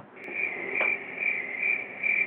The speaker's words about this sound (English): Crickets in Oakland.